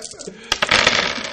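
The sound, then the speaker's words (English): Ten dice tumble and clatter across a hard surface in a quick burst of overlapping clicks that lasts about a second. “With my 10 collateral dice.”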